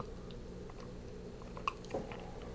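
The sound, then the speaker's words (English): Someone takes a quiet sip of water, with soft mouth and swallowing noises and a small clink partway through, over a faint steady background hum. “Let me give you a chance to get a pad and paper while I take a sip of water.”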